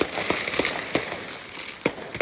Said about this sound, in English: Oh, man. That's why it's on fire. RV has fireworks. Still going. Woo! Boom. Still going. Early 4th of July.